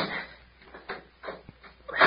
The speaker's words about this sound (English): Well, first climb up and close the cabin door and lock it.